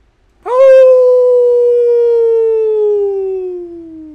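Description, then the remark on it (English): A single long, loud wolf howl rises sharply, then holds and slowly slides downward in pitch for several seconds. It is clear and alone, with no talking. “As a chorus of wolves begins sounding through the city, you see a burst of energy.”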